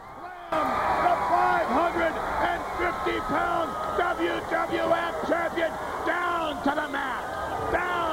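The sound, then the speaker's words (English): A large crowd aboard the USS Intrepid cheers wildly on July 4th as Lex Luger slams Yokozuna, a dense roar of many voices with whoops and yells rising and falling continuously, loud throughout. “The crowd goes absolutely banana.”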